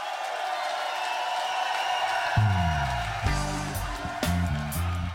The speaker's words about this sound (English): So it's two experts telling us what might happen this season on the European Football Show in a association with Eurosport, and that at least is worth a round of applause.